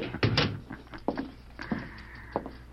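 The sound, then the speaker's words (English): A sheriff slams a heavy metal jail cell door shut with a loud clang, locking a visitor in with a prisoner, followed by several sharper clicks and clanks of the lock being turned, with a faint metallic ring lingering. “I'd step right into the cell, Mr. Fox. I'll have to lock you in while you talk to the prisoner.”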